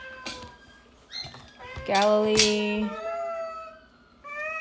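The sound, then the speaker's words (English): A cat meows loudly in several drawn-out, wavering calls while someone tries to stop it from eating tape, the longest one in the middle almost a yowl, with short pauses between them. “Be quiet. Try to stop the cat from eating tape.”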